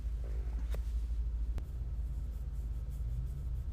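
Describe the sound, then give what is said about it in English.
A big diesel car parking next to the speaker idles, a steady low diesel rumble with a faint hiss over it, broken by two brief sharp clicks. No one speaks. “There's a car parking next to me, so I have to be quiet for a minute.”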